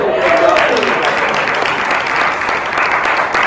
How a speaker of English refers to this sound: Let's give a round of applause for our band.